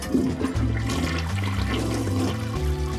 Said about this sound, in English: To my mind, it's like the whoosh of the toilet as you flush almost serves as a mind eraser. And then the invisibility of the whole infrastructure enables that flush and forget environment.